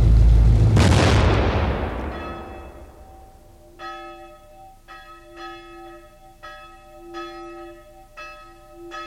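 A heavy boom crashes and fades, then a church bell rings out, struck again and again at a steady pace, its bright overlapping tones lingering between strikes. No voices.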